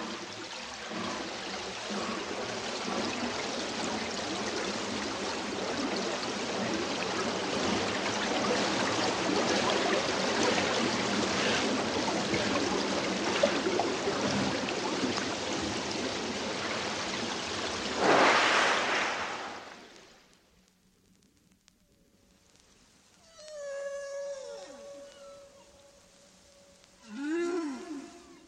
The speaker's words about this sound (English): The strange steam engine sound is the whale spinning its bubble net, followed by the burble of rising bubbles, and finally the net spinners spouting breath at the surface.